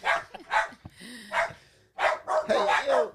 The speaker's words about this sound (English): Sorry. Yep, there's the dogs.